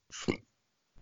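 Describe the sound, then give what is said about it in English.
A single short burp, a breathy rush that swells into a low guttural croak and stops abruptly, followed by a moment of quiet. “Are you burping during the podcast?”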